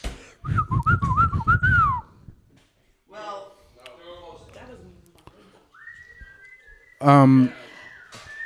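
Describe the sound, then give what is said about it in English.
A person whistles a short, wavering family whistle call of several rising and falling notes, followed by voice-like sounds and a later steady, higher whistled tone, fairly loud. “I am curious the origination of our family whistle.”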